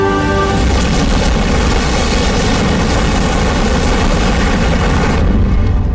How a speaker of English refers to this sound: So what you're actually hearing there is the dam breaks above, you know, where the ark is. And there is a flood, but it doesn't come from necessarily the rain.